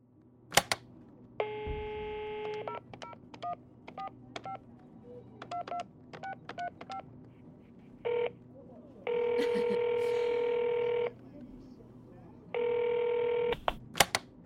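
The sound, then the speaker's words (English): A rapid series of short keypad tones dials a phone number for a call to a lawyer, followed by several long, steady electronic ringing tones as the call goes through, clear over a quiet background. “We got this lawyer phone call.”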